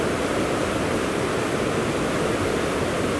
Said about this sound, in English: Right now you are listening to a flow of water. I want you to visualize yourself in a place where you are comfortable, where the water is in front of you.